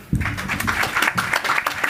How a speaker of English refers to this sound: A round of applause for our guys here, our folks here.